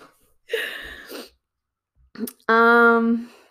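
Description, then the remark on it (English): A dog snoring in a few separate breaths: a raspy, snuffling snore, a brief snort, then a louder, drawn-out nasal snore with a buzzing, almost whining tone. No one speaks. “I don't know if you can hear that, but my dog is snoring and it's so cute.”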